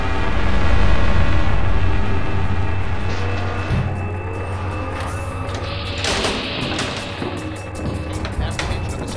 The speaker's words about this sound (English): Look at that monster! That's a tactical FIS mobile command post. Look at that monster! I've never seen a big beast of a machine like that hover off the ground!